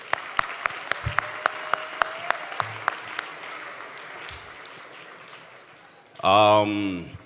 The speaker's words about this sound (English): First of all, before I even get started, I just want to thank all the nominees. And once again, like, just everybody in Canadian music in general. Can we just, like, give a round of applause for that?